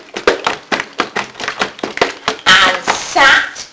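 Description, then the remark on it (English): A voice imitates the loud, wet footsteps of Freddy the frog hopping into a kitchen: a quick, uneven run of loud smacking clicks, then a longer, noisier slurping squelch near the end. “Freddy hopped into the kitchen with loud, wet footsteps.”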